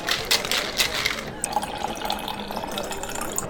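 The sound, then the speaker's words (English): Beer pours steadily into a glass, a continuous gush of liquid with fizzy splashing that shifts in pitch as the glass fills, with no talking over it. “So before we get too far into this, we are going to pour our second beer for the evening.”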